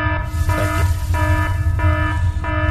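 A loud, buzzy alarm blares in about five evenly spaced pulses, each a harsh electronic tone, over a steady low rumble with no voices.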